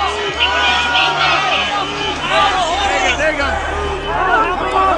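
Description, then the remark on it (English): A dense, agitated crowd of rioters roars and shouts continuously while battling a handful of officers at doors on the east side of the Capitol building around 5 p.m., many overlapping voices yelling at once with rising and falling cries over a low steady rumble. “Rioters have been battling a handful of officers at these doors for almost half an hour.”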